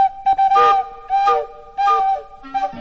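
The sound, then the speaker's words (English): The whistle of Little Toot the Tugboat, a small tugboat, toots four times in a quick, bouncy rhythm, each blast short, bright and reedy, loud with brief gaps between. “That was Little Toot all right, and what a cute silly whistle he had.”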